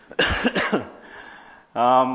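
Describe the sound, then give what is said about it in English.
A few quick, rough coughs from a person still getting over a couple of weeks of illness, followed by a short pause before a voice begins speaking. “Still got a little bit of a cough, but if I just start talking nonstop, I think it'll be okay.”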